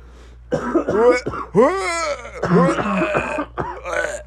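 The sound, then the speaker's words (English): A loud run of coughs mixed with laughter, several raspy bursts tumbling one after another over about four seconds, with some throat clearing in between, as a person starts coughing because of laughing. “That was just like I was starting to cough because of the laugh.”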